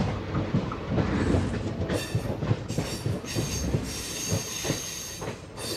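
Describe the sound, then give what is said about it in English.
A passenger train of the Indian Railway rolls steadily along the rails in India, with rhythmic wheel clatter, metallic squeals and a constant loud rumbling hiss, with no voices. “takes a trip on the Indian Railway to discover the complex relationship the country has to love, life, movies, and more.”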